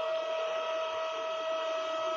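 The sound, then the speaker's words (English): A power drill runs steadily overhead, a continuous motorized whine with a strong mid-pitched tone and buzzing harmonics, holding at an even level throughout with no one speaking. “Someone is drilling directly above me.”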